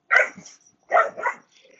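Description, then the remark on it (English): Dogs, including a pet dog named Gadget, bark in two short, sharp bursts with a brief pause between them, each burst a quick double bark. The barking is clear, with no talking. “So, as you might hear in the background, dogs are doing a little bit better.”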